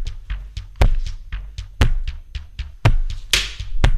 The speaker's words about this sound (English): Hitting the mic with the sticky note? Yeah.